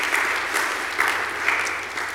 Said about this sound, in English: Clap your hands and let's praise the Lord.